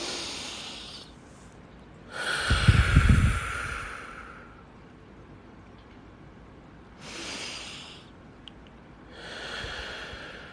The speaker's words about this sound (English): So, I want you to concentrate on your breathing again. I want you to take a deep breath.